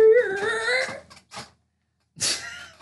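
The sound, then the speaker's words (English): An office chair squeaks each time its sitter moves slightly, in a long, wavering high-pitched creak, followed by a couple of short rustling shifts and then another strained squeal as it moves again. No one speaks. “You can probably hear my chair just as clearly as you can hear my voice.”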